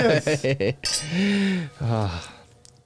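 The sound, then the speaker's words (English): Glasses clink together in a brief, bright toast, mixed in with voiced, wordless sounds from people. “Cheers to that, dude.”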